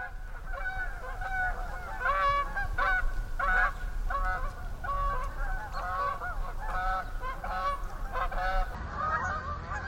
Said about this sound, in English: I came upon a flock of geese that landed in the pond at the farm down the road, and boy, what a glorious sound. What a glorious sound.